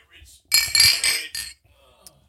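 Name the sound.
beer glasses clinking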